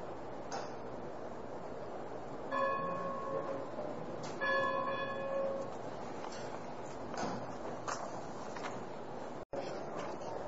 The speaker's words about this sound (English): Good morning, everyone. That bell seemed to ring awfully quick.